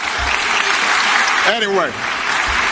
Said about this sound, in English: Anyway. Oh, stop applauding. Gag me with a spoon.